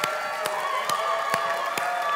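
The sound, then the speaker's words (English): An audience cheers in a steady, dense roar, with sharp claps landing at an even beat roughly twice a second throughout. No single voice stands out from the crowd. “So after three, if Jesus has impacted your life, whatever way you feel appropriate, why don't you cheer? One, two, three.”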